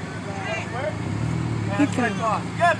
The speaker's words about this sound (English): Okay, guys. He's reversing his car and yelling at him.